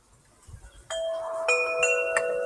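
Wind chimes ring out clearly with several overlapping metallic tones struck in quick succession, each note lingering and blending into a shimmering sustained ring. No one speaks.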